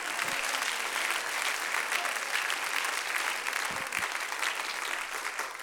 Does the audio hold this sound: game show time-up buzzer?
no